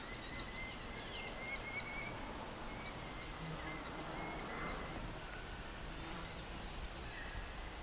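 Faint chattering calls from two Merlin falcons, quick repeated high notes in short bursts, drifting over a steady outdoor background hiss with no talking, heard during a breeding bird survey.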